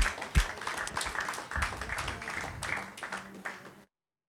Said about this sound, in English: Just wrap it up and we'll just give God a clap for all he's doing.